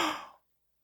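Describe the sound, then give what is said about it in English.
A short, airy rush of an audience inhaling deeply together, loud at first and tapering off within half a second into silence. No one speaks. “Just indulge me for a moment. Breathe in.”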